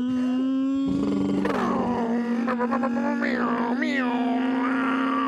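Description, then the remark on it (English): Voices imitate revving motorcycle engines with buzzing lip-and-throat drones, a steady low hum under rising and falling revs and several sharp throttle swells, loud and continuous throughout. “You guys want to play mouth motorcycles?”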